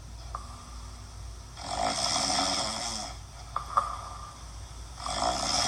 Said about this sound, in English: Play snoring button. Add snoring to play snoring button. Pause snoring button.